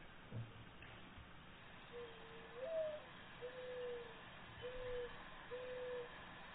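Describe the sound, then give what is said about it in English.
A bird cooing, played back through a phone: a series of four soft, low, hollow coos in a steady rhythm, the second slightly higher, with no one talking over them. “I'll play the coup again, and then Brad can tell us which one he thinks is the closest.”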